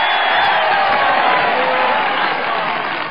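A steady, loud wash of applause and cheering from a crowd, sustained for a few seconds and tapering only slightly at the end, with no one speaking over it.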